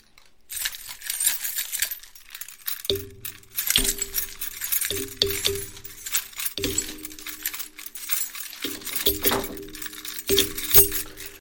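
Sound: keys jangling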